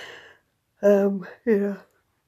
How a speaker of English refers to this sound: Hence my yawning.